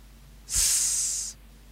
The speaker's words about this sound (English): Okay, it's. Okay, it's a hiss.